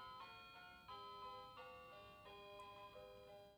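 A warped, slightly detuned chiming melody plays from a musical clock above a recording spot, which goes off on the hour and has survived about five moves, sustained bell-like notes stepping through a tune in a steady rhythm, clear with no talking.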